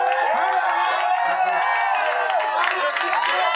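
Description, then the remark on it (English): A loud crowd cheers and shouts continuously, many overlapping voices rising and falling in a dense, sustained roar with occasional higher yells breaking through. “They're cheering over nothing.”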